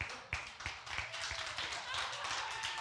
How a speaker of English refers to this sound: It was our anniversary yesterday, by the way, for everybody that missed. So, and yes, I was looking for an applause, so thank you for doing it. It's actually an applause for her putting up with me is the reality of it.